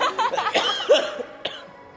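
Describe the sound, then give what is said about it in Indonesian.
A loud cough burst followed by a couple of smaller hacking coughs, trailing off into a quiet tail; no talking alongside. “Jarang sakit. Tapi ambil batuk.”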